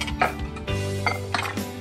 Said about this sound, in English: For my wet ingredients, I'll beat up 2 eggs, 1/2 cup of whole milk. I'll whisk these to combine, and then I'll pour it into my dry ingredients.